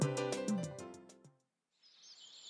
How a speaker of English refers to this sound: Golden eagle.